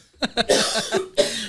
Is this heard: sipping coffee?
no